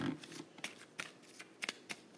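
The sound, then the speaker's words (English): A deck of cards being shuffled during a card game, with a series of crisp, papery riffles and snaps in an uneven rhythm, fairly quiet and with no voices. “Final shuffle, which means that the...”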